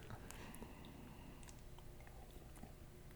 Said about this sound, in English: I mean, let's see here. Let's take a sip. All right. Here, cheers. Cheers. Nice.